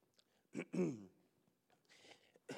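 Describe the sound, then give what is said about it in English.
A harsh bout of coughing and throat clearing from a speaker who has run out of cough drops: one strong raspy burst, then a breathy exhale and another short cough at the end, with no talking. “Excuse me, I ran out of cough drop.”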